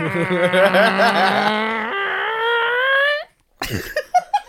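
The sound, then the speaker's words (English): A voice imitates a car peeling away: a long, loud, wavering whine that jumps higher and slides upward for about three seconds, then cuts off into silence followed by a few short rough bursts. “That sounded like a car peeling away.”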